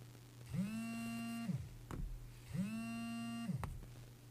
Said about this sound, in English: That was my phone ringing, but I said declined.